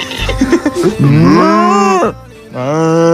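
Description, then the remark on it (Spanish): A cow moos loudly, a few short grunting calls leading into a long drawn-out moo, then a brief pause and a second sustained moo. “Mientras el bicho removía las bolsas tambaleándose, una vaca era testigo del flipante suceso.”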